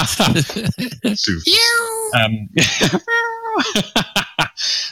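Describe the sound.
A female cat meows twice, each call a drawn-out, tonal wail, with a person's voice and other brief sounds around them.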